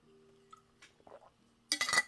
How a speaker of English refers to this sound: Oh, I have someone serious of sleepovers, honestly, but let me drink some water before that.